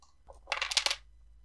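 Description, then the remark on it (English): Dice rattle and clatter across a hard surface in a quick burst of bright, overlapping clicks lasting about half a second, preceded by a soft shuffle, with no voices. The dice are rolled for damage after a natural 20 in a tabletop game: 2d6 plus an additional 2d4. “What dice have not betrayed me?”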